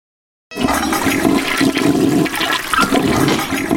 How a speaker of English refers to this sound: Frank decides to flush the ashes. Yeah, he flushes Country Mac down the toilet.